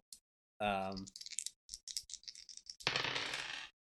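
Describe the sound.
Two dice are rolled, clattering and bouncing across a hard surface in a quick run of small, sharp clicks and landing on a one and a two, followed by a brief rustling rush of noise; a short voiced sound comes just before.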